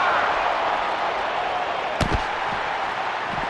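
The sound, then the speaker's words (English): A single sharp, hard impact as a briefcase is knocked against someone, followed by a couple of dull thuds, over a constant roar of a large crowd. “Picks that briefcase again and knocks.”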